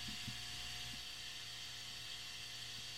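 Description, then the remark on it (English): A refrigerator's ice maker runs with a steady, low mechanical hum and airy whir, broken by a couple of soft knocks near the start. The sound is fairly quiet, with no voices. “The fridge just went crazy.”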